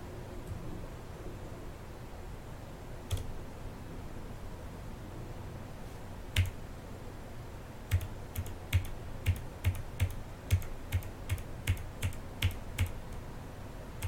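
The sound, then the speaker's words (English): Keys on a computer keyboard are pressed, starting with a few scattered taps before settling into a quick, steady run of clicks over a low background hum, as one pressed key spams repeated input. Fairly distinct, with nobody talking. “It's spamming button keyboard things. Because I clicked one button, so it spammed 50 million.”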